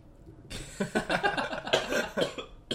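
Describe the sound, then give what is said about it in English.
A burst of repeated, harsh coughing, a rapid series of hacking coughs that runs for a couple of seconds with short gasps between them. “Coughed up your last lung.”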